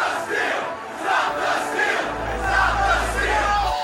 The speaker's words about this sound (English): Stormed the Capitol building. They are marching through now.